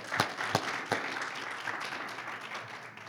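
An audience applauds, a dense wash of many hands clapping with a few sharp, louder claps standing out near the start, steady and moderately loud throughout.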